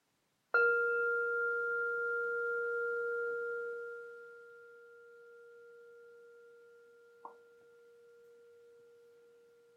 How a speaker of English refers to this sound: So this sound of the bell will carry our rejoicing out into the cosmos.